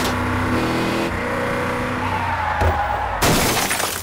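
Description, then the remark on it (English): A car engine drones and whines as the car swerves on a hairpin curve, a brief screech rises, then a loud, sudden crash of splintering and breaking debris bursts in near the end as the car breaks through a fence, with no voices. “The car swerves dangerously as the fight continues. Oh no, that hairpin curve! They're going to...”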